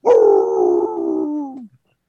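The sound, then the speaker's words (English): A dog named Blue lets out a single sustained howl at night in Innsmouth, lasting about a second and a half, its pitch sliding gradually downward before trailing off, loud with no one talking. “Among those sounds in the night of Innsmouth from here on out, besides the wonderful tickle-a-lily, tickle-a-lily, you could hear the occasional howls of Blue.”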